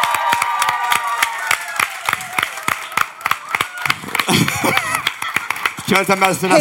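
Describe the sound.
An audience applauds with steady, rhythmic clapping that stays loud throughout, joined midway by excited shouts and whoops from the crowd, with voices rising over the claps near the end.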